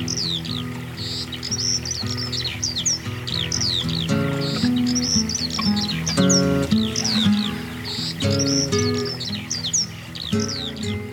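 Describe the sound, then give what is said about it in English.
Birds chirp and tweet in quick, repeated bursts throughout, bright and fairly prominent, layered over steady tonal music playing underneath. “Well, before there was more cowbell, there was more bird noises.”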